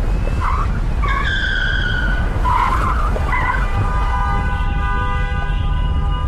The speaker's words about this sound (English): took a sharp turn right. We went down the oncoming ramp, zipped past some cars, crossed an intersection, and jumped back onto the parkway.